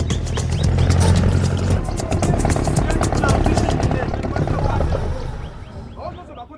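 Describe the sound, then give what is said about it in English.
An engine being started in Congo roars with a deep, steady rumble and a fast rhythmic throb, holding loud for several seconds before dropping away at the end, with birds chirping faintly over it. “They're starting the engine from the start.”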